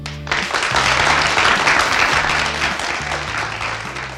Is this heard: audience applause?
yes